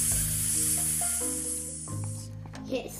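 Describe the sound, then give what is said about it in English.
A voice stretches the word hiss into a long, drawn-out snake-like hiss, a steady breathy sibilant held for about three seconds, with faint low tones underneath. “So instead of saying hiss, you would say hiss.”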